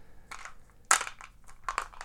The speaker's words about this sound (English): I said to myself, okay, I don't care if you destroy the cards in the game or the board, but I'm taking this dice. And then there is me dropping it back in with some other dice.